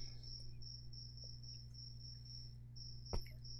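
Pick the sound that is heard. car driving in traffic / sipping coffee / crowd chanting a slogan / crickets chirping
crickets chirping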